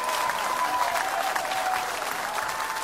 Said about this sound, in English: If you believe that, give the Lord a great big clap offering.